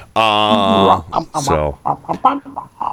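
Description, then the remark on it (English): A person imitates a chicken, opening with a long, loud, nasal squawk and following with a string of short, choppy clucks in an uneven rhythm. “Chicken was pretty good. It was. That was a good chicken.”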